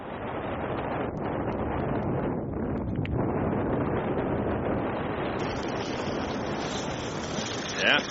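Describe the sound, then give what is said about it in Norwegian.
Strong wind roars steadily across the microphone, a dense, rumbling buffeting that fills the whole stretch, with faint water and boat noise underneath and a brief louder gust near the end. “I tillegg til det har vi fått vind, så vi har hatt utfordrende forhold, som vi måtte til enhver tid manøvrere og legge om ruten vår.”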